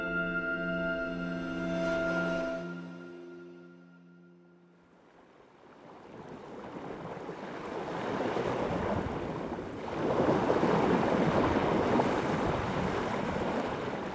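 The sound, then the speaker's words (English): Coastal ambience of Alaska's far northeastern region, in the Arctic National Wildlife Refuge: a steady droning hum fading out in the first few seconds, giving way to loud rushing wind and surging waves that swell and roll on without any voices. “Those are the sounds of Alaska's far northeastern region, home to the Arctic National Wildlife Refuge, or ANWR, a federal protected area since 1960 and one of the United States' most remote regions.”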